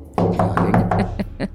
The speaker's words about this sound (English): All right, you knock, and a little bit, a couple seconds goes by, and the door opens, and you see a man standing there.